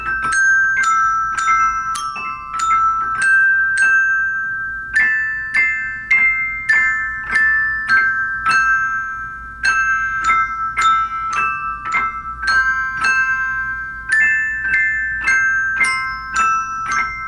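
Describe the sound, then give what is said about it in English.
A set of bells, struck with rubber sticks, plays a repeated melodic phrase, each note ringing clearly with bright overtones and overlapping decay, struck in a steady rhythm for the whole stretch with no talking. “So do that phrase one more time and see if you can get a little bit better sound out of your sad little bell set.”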